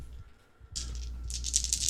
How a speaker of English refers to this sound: That sounds like a lot of dice you're rolling.